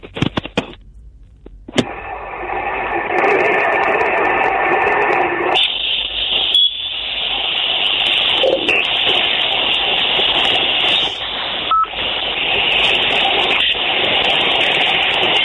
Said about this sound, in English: Why is it just playing static to us?